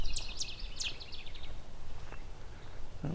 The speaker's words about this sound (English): Oh, an annoyed warbler here. Yellow warbler.